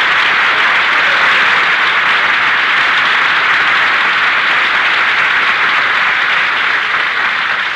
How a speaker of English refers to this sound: Applause, Jack. They were sensational. Don, I don't care if they applaud all night.